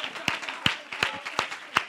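An audience claps in unison, five sharp, steady claps about a third of a second apart, with a soft murmur of voices underneath between the beats; the clapping is in praise during worship.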